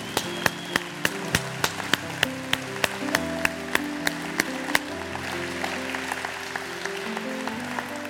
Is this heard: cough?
no